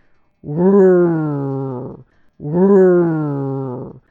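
Two long, low growls, each lasting over a second and a half, with a short pause between them. The loud, steady rumbles sound voiced, like a person imitating an animal.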